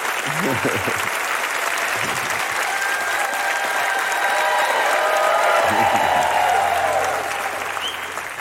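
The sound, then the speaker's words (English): Steady audience applause from roughly ten people fills the whole stretch, a patter of clapping that stays loud throughout, with a few brief murmurs of voices underneath. “That was like 10 people clapping.”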